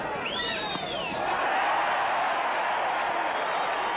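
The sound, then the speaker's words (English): A large crowd cheers in a loud, steady roar that fills the whole stretch, with a few sharp whistles cutting through near the start. “You know, when I hear that, I just keep thinking, man, wouldn't it be nice to be one of those guys that they're cheering?”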